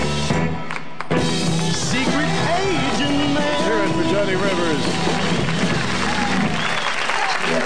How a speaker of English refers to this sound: It's amazing. A lot of his early hits, there's a lot of cheering at the end. It's good to have a nice group there when you're making a hit song.